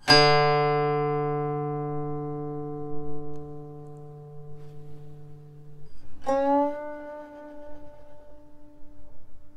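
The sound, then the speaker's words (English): A guqin string plucked outward with the index finger (the tiao technique) rings low and rich, sustaining for several seconds before a second, slightly higher pluck sounds with a bright attack and lingering tone. No voices. “You may already notice that one note being plucked can be varied to different tones.”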